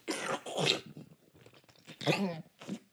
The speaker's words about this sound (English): So this Josef Brau Summer Brew fermented lager stuff is yum, yum. Let me take another sip here. I'll turn it down this time.